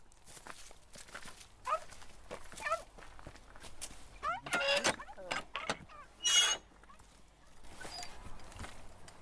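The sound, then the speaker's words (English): Footsteps crunch along outdoors at an unhurried walking pace as someone walks a dog, with a few louder scuffs and rustles partway through and faint background sounds in between. “When I'm out walking my dog, my head's full of all kinds of thoughts.”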